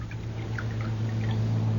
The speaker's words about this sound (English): I'll pour the coffee. You want me to do it? No, I want to do it.